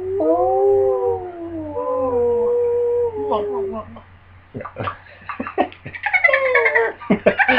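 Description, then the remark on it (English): Whale song picked up on a ship's sonar: long, wavering tonal moans glide downward for several seconds, then break into a rapid flurry of higher squeaks, chirps and whistles, fairly loud. “Sounds like whales.”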